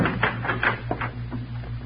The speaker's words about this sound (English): Somebody's unlocking the door.